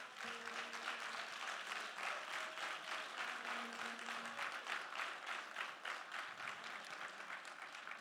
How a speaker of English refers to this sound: Come on, clap them hands.